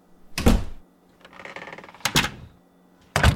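Hollow knocks on a shut door, three separate sharp taps spaced unevenly, with a softer rustling scrape between the first two. Fairly loud, no talking.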